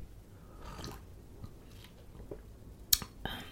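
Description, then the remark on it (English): Soft sips of hot energy tea, drunk plain without honey, a few quiet slurping mouth sounds spread over a few seconds, with a brief sharper click near the end. No one speaks. “So, you know, let's sip this tea and let's get started.”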